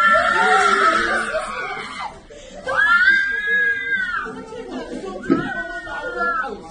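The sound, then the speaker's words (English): Loud, high-pitched joyous screams from relatives welcoming a Palestinian woman released from prison, rising and falling in long overlapping bursts, mixed with excited shouting voices. “A Palestinian woman was released to joyous screams from relatives.”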